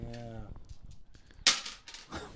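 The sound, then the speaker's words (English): A brief voice is followed by a sudden loud clack of two dice hitting a hard surface, then a few quicker rattling knocks as they tumble and settle, rolling an eight. “I got two dice. They're loud.”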